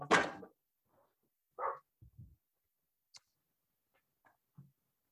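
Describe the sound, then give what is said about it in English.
A dog lets out a loud bark at a child walking past a big glass door, then a second shorter one, followed by low thumps like a door closing as the dog is put into the house, and a few faint clicks. “One of my kids was foolish enough to walk by the big glass door and the dog freaked out.”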